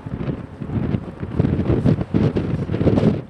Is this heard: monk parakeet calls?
no